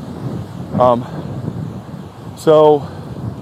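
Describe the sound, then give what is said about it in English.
Steady wind rumbles and buffets the microphone on a beach while someone walks out along it, broken by two short, loud tonal bursts, one near the start and one toward the end. “wow, it's kind of windy out here. I don't know if I'm able to do this on this portion right here, guys.”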